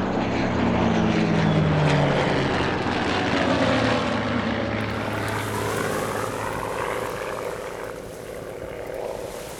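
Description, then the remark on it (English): A propeller airplane engine drones loudly and steadily, its pitch sliding slightly lower early on before settling into a constant roar with rushing wind noise throughout. “You'll need that air in your lungs after your plane drops into the ocean.”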